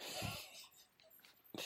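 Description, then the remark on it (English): A dog sneezes twice, each a short, breathy, hissing burst, one at the start and one at the end, with faint wheezy snuffling in between. The sounds are fairly quiet, with no talking. “My dog is sneezing and gross.”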